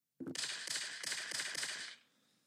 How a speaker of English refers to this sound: A distant gunshot. Wasn't supposed to be that distant. I just held my phone away from the microphone.